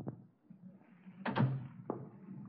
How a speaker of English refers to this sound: Look, close the door and sit down.